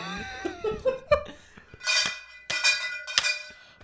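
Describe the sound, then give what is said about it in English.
A warbling, cat-like yowl gives way to three loud, clanging bell strikes about half a second apart, each ringing on with a bright metallic tone. “If you don't give us 5 stars only, then we'll make you get the bell.”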